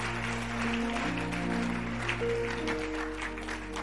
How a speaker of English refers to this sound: Clap your hands. Let me know I'm downloading something into your spirit.